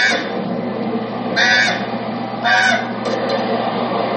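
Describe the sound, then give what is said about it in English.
Loud, nasal goose honks burst out, two strong calls about a second apart over a steady rumbling background, followed by a fainter squawk. “Okay, you're going to get along good with them because these birds have six cents.”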